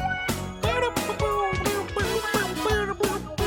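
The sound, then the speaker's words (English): A lead guitar solo plays a bending, sustained melody over a steady, driving drum beat, loud and upfront in a full band mix with no vocals. “There's a pretty cool guitar solo a bit later in the song.”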